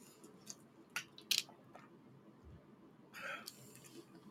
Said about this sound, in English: Okay, my throat is really dry today. I'm taking more water.